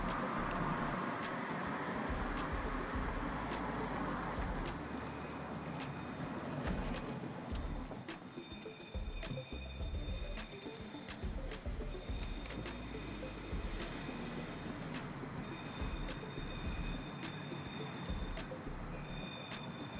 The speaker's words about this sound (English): We now take you to a very dramatic moment in time. A car driving down an alley.